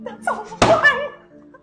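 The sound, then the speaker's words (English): A single solid thunk as a twenty-sided die (d20) is rolled, like a die landing on a table, cuts sharply through people talking and fades quickly as the voices carry on. “this is gonna either end with roll a d20.”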